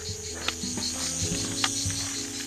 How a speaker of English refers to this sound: Can you hear those cicadas?